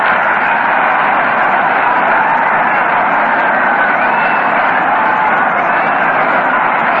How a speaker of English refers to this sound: It's a two-base hit. Listen to that roar of the crowd.